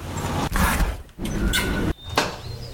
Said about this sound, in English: Select the sound for when your door opens.